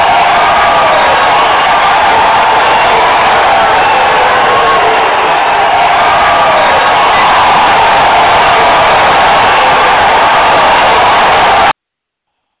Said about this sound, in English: And the rest of that's just cheering stuff.